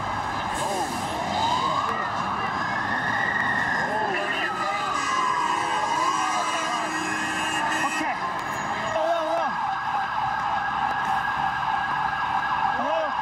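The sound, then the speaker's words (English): Emergency sirens wail with rising and falling sweeps over a dense, noisy street scene with a lot of debris during the 9/11 attacks, continuous and fairly loud, while indistinct voices murmur underneath throughout. “A lot of debris, a lot of sirens, etc.”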